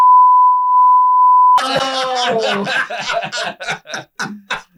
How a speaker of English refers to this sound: Oh, man. I'm going to have to beep him.